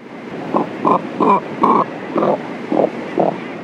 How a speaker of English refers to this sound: Let's listen again to the limited vocal range of the cormorant, whose syrinx is controlled by only one set of muscles.